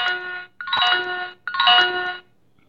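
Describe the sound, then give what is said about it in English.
A talking microwave oven plays its finished chime after running 15 seconds on high power to melt a stick of butter, a short melody of three bright electronic bell-like tones, each ringing out about half a second, loud and alone with no talking. “The music says it's done.”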